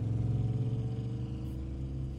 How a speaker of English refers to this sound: Theora got into the car, gave Janet a kiss, and they sped away from the university.